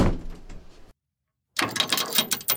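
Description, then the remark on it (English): A door opening into a large echoey room starts with a low rumbling mechanical grind, goes quiet for a moment, then resumes with a brighter, rattling scrape as it slides further. Fairly loud, with no voices. “We open this week's door and step inside to find ourselves in a large echoey room.”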